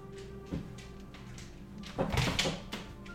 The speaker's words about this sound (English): Okay, what's that, buddy? Yeah, go ahead, open that door. Hey, buddy. Want to go outside? Come on. Go ahead.